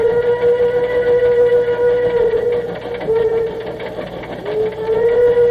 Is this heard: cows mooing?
no